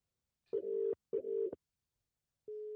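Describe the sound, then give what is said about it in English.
A phone call's ringback tone: a steady electronic tone pulses twice in quick succession, pauses, then starts another ring. It is clear, moderately loud, and plays alone with no talking. “I don't know if it's ringing. Turn that up.”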